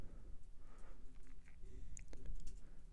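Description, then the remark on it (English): Quiet keyboard typing of search keywords, a scattered run of soft clicks and taps that grows a little busier toward the end, with no voices. “Just typing in keywords, see if it'll come up.”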